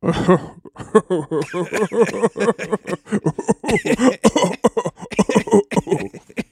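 Several people laugh and cough together while passing a pipe and blowing smoke rings, a rapid, uneven stream of chuckles broken by harsh coughs, with no clear words spoken.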